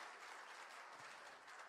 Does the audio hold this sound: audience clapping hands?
yes